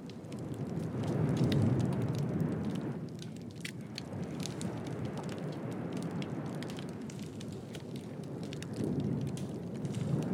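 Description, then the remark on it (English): A dense, continuous crackle of snapping shrimp on a severely stressed, mostly dead, bleached coral reef in Fiji, countless sharp clicks popping over a low, surging underwater wash of waves that swells and eases, with no voices. “All you hear is snapping shrimp in the waves.”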